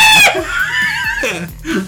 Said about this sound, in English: lets out a very masculine scream at a high pitch.